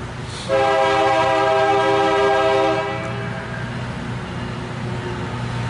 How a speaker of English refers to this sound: Looks like another work train. Maybe they're doing some repairs further down on the tracks there. Something's going on, I don't know. You got work trains coming through.